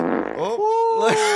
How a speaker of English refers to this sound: Fart noise. Yeah. Dude, your dog aired it fucking out.